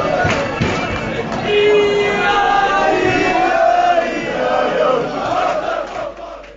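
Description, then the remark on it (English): A roaring football crowd, dense and loud throughout, with chanting voices and sustained tonal singing rising above a constant wash of cheering, dipping slightly near the end. “I thought I'd mix it up a little bit there, play the old crowd noise rather than George Tanner's little bit”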